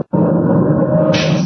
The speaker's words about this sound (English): Keep looking, Miss Lane. What do you see now? Why, there are two doors rolling right out of the wall.